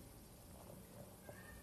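A cat meows softly a few times in quick succession, short faint cries over a steady background hiss, with no one talking.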